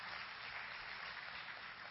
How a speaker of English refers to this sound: Come on, somebody, give your Lord a hand clap.